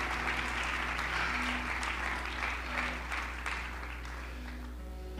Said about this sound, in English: Well, come on, clap your hands unto the Lord.